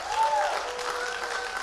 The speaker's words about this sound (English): We are becoming wise. Somebody clap your hands and shout real big. You're becoming wise.